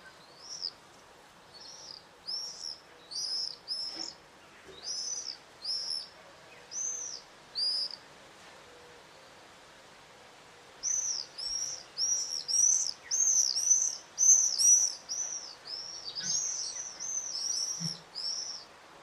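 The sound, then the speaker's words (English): A screaming party of swifts: rapid, shrill high-pitched screams in quick overlapping bursts, a first volley, a brief lull, then a louder, denser chorus sweeping past, with no voices. “For many, the sound of a screaming party of swifts is the quintessential sign that summer has finally arrived.”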